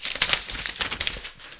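Paper crinkles in someone's hands in a quick, irregular string of crisp rustles and crackles, with no talking, lasting under two seconds.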